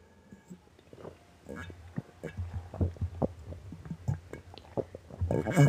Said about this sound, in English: Grab water, grab your nearest water bottle, go get water, pause this right now and go get some water, glass of water, I don't care, but any water, drink some water, and let's enjoy this water right now with me.